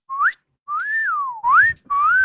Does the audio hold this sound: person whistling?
yes